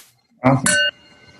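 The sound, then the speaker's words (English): A single bright clink of wine glasses touching in a toast to a guest's wine, its high ringing tone lingering and fading for most of a second, just after a brief burst of voice. “So we will cheers to you, man, and your delicious wine.”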